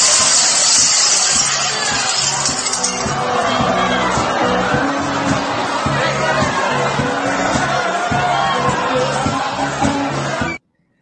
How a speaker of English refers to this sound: That's a lot of broken glass. So that was on the Diamond Princess a few years ago